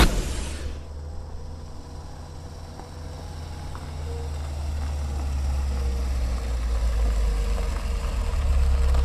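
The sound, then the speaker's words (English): A car engine idles steadily on arrival after a long drive, with a low, constant rumble and faint mechanical hum, swelling slightly louder toward the end. No one speaks. “Oh wow, I can't believe after all this driving, it's been a long time in the car, but we finally made it here.”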